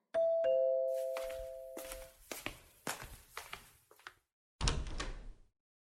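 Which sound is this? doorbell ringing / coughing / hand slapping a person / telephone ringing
doorbell ringing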